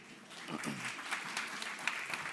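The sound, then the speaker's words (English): An audience applauds steadily as two volunteers come up on stage, a dense wash of many hands clapping, with faint voices mixed in underneath. “Isn't it great to get claps when you haven't done anything yet?”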